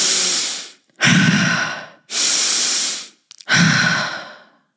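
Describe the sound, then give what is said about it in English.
Four loud, breathy rushes of air alternate steadily during an integrative breath session of halo active breathing: two sharp, hissing inhales through the nose, each followed by a fuller, lower exhale out the mouth, with brief pauses between and no talking. “And we're going to just do the halo active, deep, forceful inhale through the nose, exhale out the mouth.”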